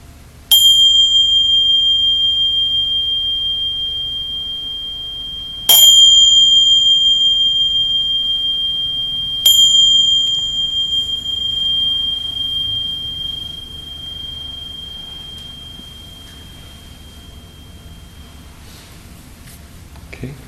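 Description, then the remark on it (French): A meditation bell is struck three times, each clear ringing tone sustaining and slowly fading, the final strike trailing off into quiet room tone with no talking. “Puis même, je vais sonner la cloche et je vais nous inviter à garder un peu de ça juste pour voir ce qui va arriver, si on peut sentir quelque chose.”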